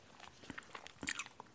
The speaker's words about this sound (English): Pardon the mouth chewing sounds.